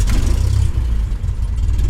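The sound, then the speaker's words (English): The twin piston engines of a Cessna 404 Titan light aircraft roar to life, a loud, throbbing low rumble with pulsing beats that holds steady and strong throughout, with no voices. “Cessna 404, it's time for plane specs. Contact!”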